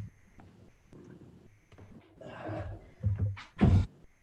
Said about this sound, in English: The place we're renting, the door doesn't fully shut, so I have to put a sleeping bag in front of it to keep it shut.